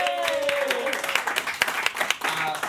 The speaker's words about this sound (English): 2 minutes, give them a big round of applause